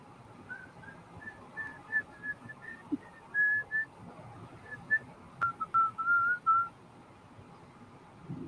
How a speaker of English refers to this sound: Now we can whistle a copyrighted tune and we'll be right?